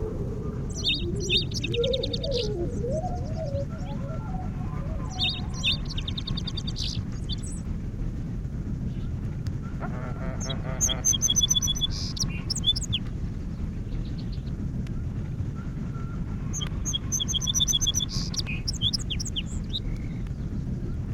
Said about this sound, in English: Two or three emphatic and identical opening notes give the clue to the infinitely varied melodies of a song sparrow.